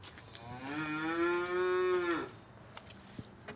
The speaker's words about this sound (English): The cows sound very happy out there, John. Well, they're probably not very happy, David. They're probably waiting to be fed,